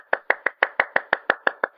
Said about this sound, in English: Again, clapping. Clapping.